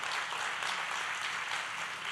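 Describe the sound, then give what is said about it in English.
A church audience at the Germantown campus, to be known as Go Church's South Metro campus, breaks into sustained applause, a dense steady patter of many hands clapping together at fairly loud volume, filling the whole moment with no voices standing out. “Yeah, if you want to clap, let's do it.”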